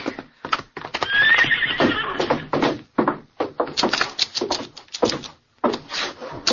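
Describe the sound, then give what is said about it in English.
A horse whinnies loudly, its neigh rising and wavering, followed by a run of sharp, rhythmic hoofbeats clip-clopping on a hard surface with brief pauses between bursts. “All right, get up your horse.”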